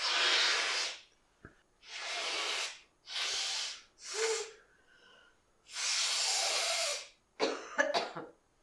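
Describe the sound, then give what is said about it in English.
Five or six harsh, breathy hacking coughs come in an uneven series, then a short gurgling burst of throat clearing as mucus is worked loose. No one talks. “I build up all that mucus and then I start strangling on it when it drips and I'm talking.”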